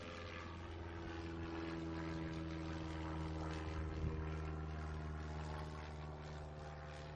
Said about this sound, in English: I love airplanes and the noise of them.